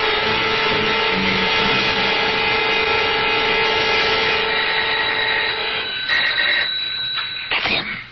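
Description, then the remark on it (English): A doorbell rings in one long, loud, continuous electric buzz for several seconds, then cuts off into a brief clatter and a short final burst. No one speaks. “The ring of authority.”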